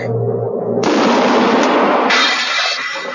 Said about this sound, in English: This is Shot Out of a Cannon